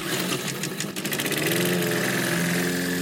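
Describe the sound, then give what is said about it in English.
A lawn mower engine catches and revs up, then settles into a steady, loud, droning run with a buzzy mechanical hum, with no voices. “Mowers, start your engines.”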